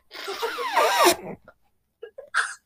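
Someone blows their nose into pajama pants: one loud, drawn-out honking blow with a wavering pitch, lasting about a second, then a brief pause and a few short snuffly bursts.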